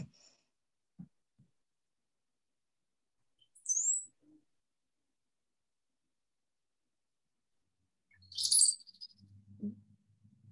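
Brown-headed cowbird song played from a phone: a short, very high squeak, then a few seconds later a longer, bright, bubbly burst of high notes, with faint low rumbling afterward and no talking.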